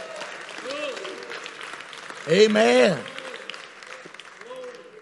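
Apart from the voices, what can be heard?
audience clapping hands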